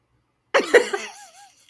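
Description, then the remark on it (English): A pair of quick, harsh coughs, the second slightly stronger, trailing into a short wavering, squeaky vocal sound before fading to quiet. “See, look, they go my cough.”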